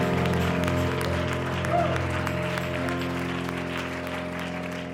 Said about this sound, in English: Come on, in a way of worship now, why don't you clap your hands to Jesus?